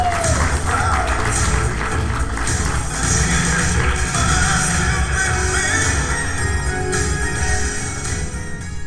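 Steady, dense applause from a comedy show audience for a comedian, as one comedian's set ends and the next is brought up; many hands clap at once in a continuous wash of noise that stays loud for about nine seconds before easing slightly at the end.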